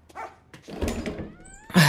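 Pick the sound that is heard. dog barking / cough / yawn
dog barking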